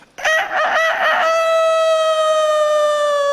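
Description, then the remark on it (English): A rooster crows loudly, a single full cock-a-doodle-doo with a choppy opening that stretches into a long, sustained, slightly falling final note. “You go anywhere in the world and there's a rooster.”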